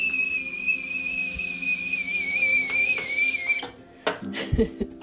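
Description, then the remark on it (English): A small red whistling teapot, newly bought, lets out a steady, shrill, slightly wavering tone for about three and a half seconds, then cuts off, followed by a few clinks and clattering knocks. “In my cute red little teapot.”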